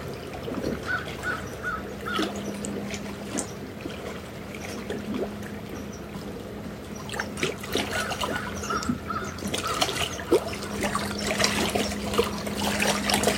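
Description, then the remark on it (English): A raven calls repeatedly, harsh croaking caws scattered across the scene, over a steady background of trickling water and a low, constant hum. “And Raven's with us this morning.”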